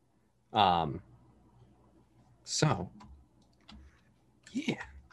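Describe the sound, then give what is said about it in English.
Faint, scattered clicks on a computer keyboard tap away quietly as someone types a message, broken up by three short, louder vocal sounds like sighs or murmurs spaced a couple of seconds apart. “Sorry, just typing some message really quick.”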